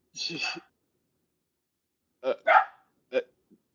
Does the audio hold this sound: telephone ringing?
no